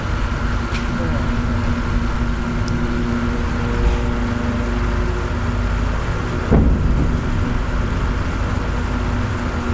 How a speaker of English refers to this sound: Huge explosion there.